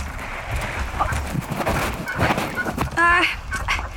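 A duck gives one short, nasal quack about three seconds in, clear above a steady rush of noise, like wind or splashing water.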